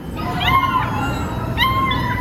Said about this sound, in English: So what we are hearing right now is the dull roar of beagles in our care and rehabilitation center, and lots of puppies barking and playing and finally out of their transport crates and kind of getting settled in, running around and playing.